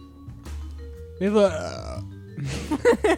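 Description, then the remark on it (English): A loud, drawn-out burp rumbles, followed by a second, longer belch with a croaky, wavering tone, both surrounded by faint background murmur. “Quit burping your ass off.”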